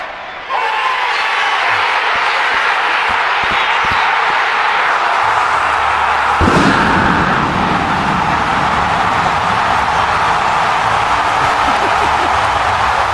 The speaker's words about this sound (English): nothing like the roar of the crowd, man. Bro. You think NFL stadiums get loud. That was ridiculous. Yeah, that was obscene.